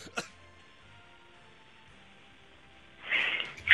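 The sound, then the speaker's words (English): A person coughs into a microphone, with something in the throat: one brief sharp cough, then a stretch of near silence, then a louder, rougher burst of coughing to close. No one speaks. “Should I turn my mic down while I cough,”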